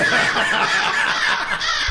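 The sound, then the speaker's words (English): A crow-cawing sound effect drop: loud, harsh, raspy crow caws fill the whole moment, running together in a continuous squawking burst with no talking over them. “Steve's got drops. Stevie Crow. He's got drops now.”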